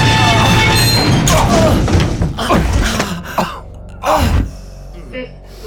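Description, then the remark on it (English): An elevator that was going down too fast crashes to a halt: a loud, harsh grinding screech with rumbling underneath, broken by several heavy jolting thuds that fade toward the end, with a gasp or two among them. “The elevator shook to a halt as the red emergency light activated, bathing the elevator in crimson.”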